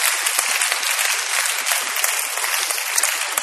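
An audience at a Bible sermon breaks into steady applause for the speaker's helper who has come up front, many hands clapping at once in a dense, crackling wash that holds an even loudness throughout, with no voices over it.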